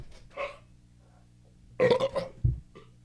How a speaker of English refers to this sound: There's a burp coming. I'm trying not to, you know.